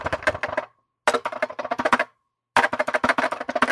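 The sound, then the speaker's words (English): Clacky mechanical keyboard typing, heard over a Zoom call, comes in three quick bursts of rapid, sharp keystrokes, each run separated by a brief silent pause, with no voices. “Heather's busting out her mechanical keyboard.”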